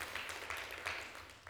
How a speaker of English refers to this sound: Anybody happy about that? So, yeah, come on, we can give the Lord a good round of applause.